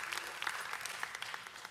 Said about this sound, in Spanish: Y creo que podemos darle un aplauso a nuestro equipo técnico también, así que muchas gracias.